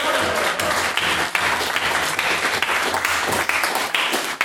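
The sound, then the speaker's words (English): An audience bursts into sustained applause for Miss Carver O'Neill's work, many hands clapping in a dense, steady roar that holds at an even loudness for several seconds. “Let's posthumously give Miss Carver O'Neill a big round of applause!”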